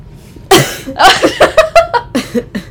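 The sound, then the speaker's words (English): A sharp, explosive cough bursts out, followed by a quick string of smaller sputtering coughs and breathy gasps, with no talking. “I didn't want to cough on you.”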